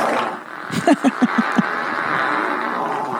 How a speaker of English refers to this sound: I mean, that's a long one. Oof. Whoa. That's her fart. That was a really good one.